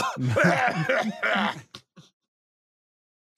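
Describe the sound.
A voice imitates a sputtering, coughing car engine with a run of strained, throaty groans and hacks, followed by a few short, fading sputters and then silence.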